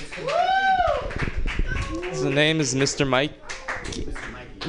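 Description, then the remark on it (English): An audience claps and cheers for a dog in the building through the first couple of seconds while a man shouts excitedly over them, then keeps talking as the applause fades beneath his voice. “Everybody, make it loud for the dog.”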